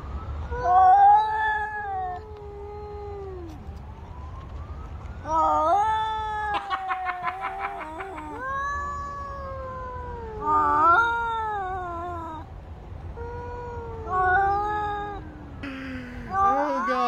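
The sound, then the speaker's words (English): Two cats yowl back and forth at each other in long, rising and falling wails, trading drawn-out caterwauls over a low background rumble, with a brief rapid rattling burst midway. “I want to go back to the cats, not the cop video.”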